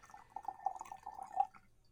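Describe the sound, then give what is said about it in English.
Coffee pouring into a cup in a steady trickle for about a second and a half, fairly quiet, with a faint glassy ring before it tapers off. “I was pouring myself a cup of Joe.”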